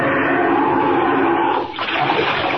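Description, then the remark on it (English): A loud rush of churning water, like a splashing plunge into icy Arctic sea among icebergs, roaring steadily with a brief lull near the end before surging on. No voices. “Down, down, right into the water.”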